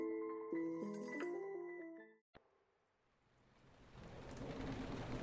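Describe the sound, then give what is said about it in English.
After a short musical passage ends with a click, heavy driving rain from a tropical storm on the island of St. Lucia swells in, growing louder and denser, with a low thunderous rumble underneath and no voices. “Lucia Jazz Festival, the rain was relentless. A tropical storm ripped through the island.”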